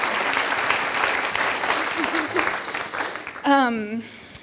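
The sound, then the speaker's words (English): Audience applause at a bookstore author event at the Bay School on a Friday night, thanking the event staff: a dense, steady wash of many hands clapping for several seconds, then a single voice briefly rises over the clapping before it fades. “Yes, a round of applause for that, for sure.”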